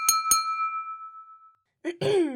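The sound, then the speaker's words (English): Two quick, bright clinks of glasses touching, close together, as glasses of grape juice are raised in a toast. A clear ringing tone fades over about a second before a voice begins speaking. “Now, let's say I raise my glass of grape juice and make a toast.”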